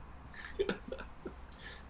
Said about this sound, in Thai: ไอ้นี่เสียงแมวร้องอีกแล้วไม่ใช่เสียงเด็กใช่ไหม ไม่ใช่